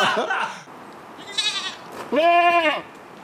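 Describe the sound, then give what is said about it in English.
A goat bleats twice, a quavering cry followed by a louder, longer, wavering bleat, heard just after a brief burst of voice at the start. “But you're not fond of goats”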